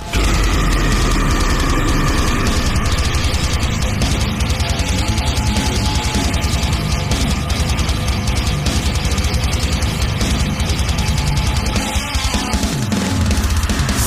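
A loud, dense heavy metal song intro: a thick wall of distorted guitars over pounding, rapid drums, relentless, with no vocals yet and a brief drop in the low end near the end.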